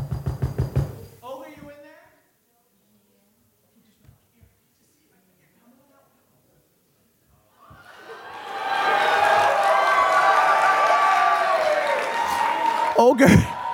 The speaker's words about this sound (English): So before you enter anybody's house, you should always knock. So just 1 second.